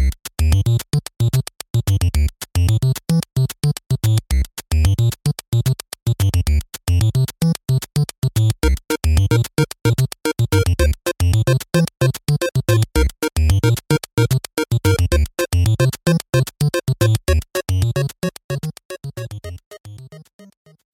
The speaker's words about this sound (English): Is that like nice little pretty intro music? It's like NPR.